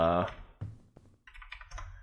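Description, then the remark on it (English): Computer keyboard typing while someone looks something up, a quick flurry of light key clicks in an uneven rhythm, preceded by a brief vocal sound at the start. “Like, sorry for the keyboard. I had to look that up.”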